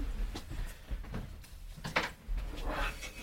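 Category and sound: household object, door being closed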